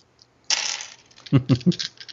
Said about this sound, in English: Roll your dice, I'll roll for you.